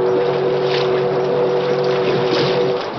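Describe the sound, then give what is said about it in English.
A paddle-wheel steamboat on a river blows one long, steady warning blast of its whistle over a rushing, rumbling wash of engine and water noise, sustained loudly from start to finish. “Once again, the whistle sounded as a warning.”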